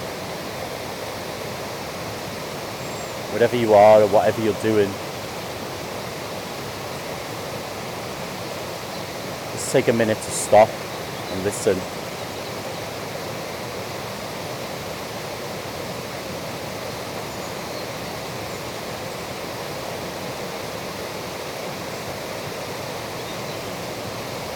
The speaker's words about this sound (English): But let's just stop and listen to this little natural waterfall here for a few moments.